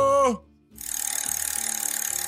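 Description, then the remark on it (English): After a brief tonal sound and a short pause, a spinning prize wheel clicks rapidly and steadily, a dense, even stream of sharp ratcheting ticks that continues without slowing. “Ryan, spin the wheel. Here we go.”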